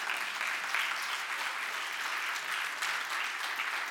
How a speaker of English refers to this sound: Yeah, you clap right now.